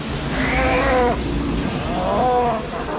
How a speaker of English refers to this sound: Cow. Another cow. Actually, I think that was the same one.